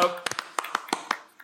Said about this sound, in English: Was I supposed to clap? Yeah, sure. I did. It makes it sound bigger.